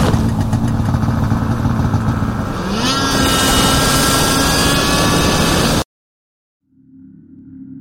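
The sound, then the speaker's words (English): Snowmobile engines roar loudly and steadily, the pitch rising partway through as they rev, then cut off abruptly to silence before a lower rumble returns faintly. “Very little can be heard over the snowmobiles at this point.”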